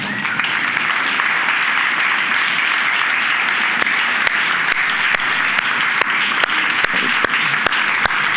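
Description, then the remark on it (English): Sustained applause from a crowd for military veterans as they stand, a dense, steady wash of many hands clapping with a few sharper individual claps popping out, continuing at an even level throughout with no talking. “In fact, if you are a veteran, you want to go ahead and stand, we'd love to give you one more hand clap.”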